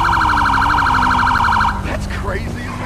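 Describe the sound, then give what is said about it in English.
A loud police siren wails in a rapid pulsing pattern for under two seconds during a siren check, then cuts off, leaving engine rumble and a few sharp chirping tones. “Siren check. Siren check, please.”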